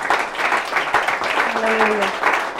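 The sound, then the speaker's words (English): A church audience claps their hands together in a dense, steady burst of applause after a prayer, at the preacher's request, with a brief voice rising over the clapping partway through. “Can you clap your hands?”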